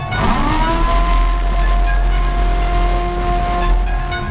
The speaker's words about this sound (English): Here comes the terrible siren.